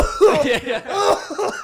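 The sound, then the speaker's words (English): A person performs an exaggerated, deep, throaty cough in a few loud bursts over under two seconds, hamming it up like a stereotypical dad, coughing from a dry throat while watching the Barbie movie. “And I just start coughing like the most dad cough imaginable.”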